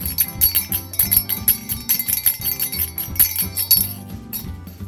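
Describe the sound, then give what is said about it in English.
Jingle bells shaken steadily for several seconds, a bright metallic jangle in quick, uneven bursts with a faint ringing tone beneath, and no voices. “I hate to criticize the jingle bells, but I'm not sure they're jingly enough.”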